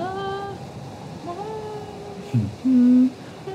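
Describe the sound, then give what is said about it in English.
A loud, low clarion horn blast rings out briefly near the end, steady and brassy, cutting through a stretch of softer wavering, whistling wind. “When a loud clarion horn sounds cutting through the wind.”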